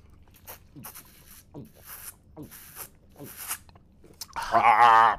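People drinking water: a steady series of wet gulps and swallows, roughly one per second, ending in a sudden loud, voiced, satisfied exhale.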